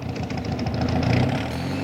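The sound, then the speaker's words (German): A car engine rumbles steadily at low pitch as the car arrives at the Obermühle motorway rest stop. A continuous hum with a faint periodic throb, fairly loud and unchanging, with no voices over it. “erklärte er sich bereit, mit Gabi und den drei Jungen zum Autobahnrastplatz Obermühle zu fahren”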